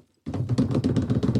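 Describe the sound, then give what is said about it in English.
A quick improvised drum roll of rapid, steady taps on a hard surface, fairly loud, starting after a brief silence and running without any voices. “Can you drum roll me?”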